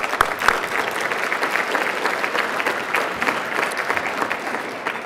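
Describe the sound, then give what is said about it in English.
Steady audience applause for Scott Pruitt, a dense wash of many hands clapping at an even loudness for several seconds, with a few sharper individual claps standing out near the start. “But I want to thank Scott Pruitt, so let's give him a round of applause.”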